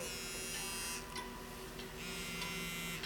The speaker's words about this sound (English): Wait, hold up. I think I'm getting a phone call, man.